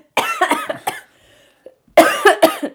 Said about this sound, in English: I can't laugh without coughing.